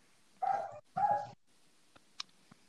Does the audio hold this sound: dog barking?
yes